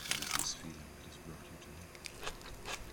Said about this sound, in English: A fried chicken sandwich topped with a Kit Kat bar, and on the side, Skittles. He licks his lips, anticipating the sandwich's sweet and salty double crunch bite.